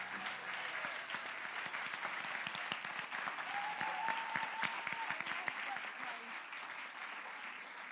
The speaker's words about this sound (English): Can we just give our cast one more round of applause, please?